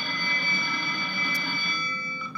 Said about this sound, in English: All right. That's the bell.